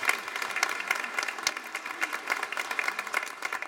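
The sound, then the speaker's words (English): A worship audience gives a round of applause to welcome a newcomer: many hands clapping in a dense, steady patter that holds at an even, moderate level throughout, with no voices heard over it. “Give Jordan a round of applause.”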